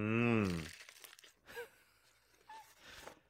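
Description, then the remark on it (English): A crunchy bite into a burger with a brief crackling chew, preceded by a loud voiced hum and followed by a few soft vocal murmurs. “Solid crunch to it, to be fair.”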